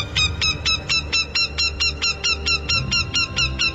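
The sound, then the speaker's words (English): A northern goshawk's alarm call: a steady, rapid series of harsh, nasal kek notes, about four per second, loud and high-pitched, continuing without pause over low background rumble. “And the other is its alarm call.”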